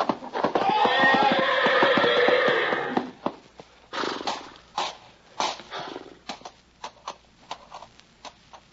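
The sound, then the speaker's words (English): A loud horse in a stall whinnies for about three seconds, then heavy hooves stamp and trample a man in a series of irregular thuds and scuffs, with no talking. “You're backing into the horse. Tramp the horse, Novak.”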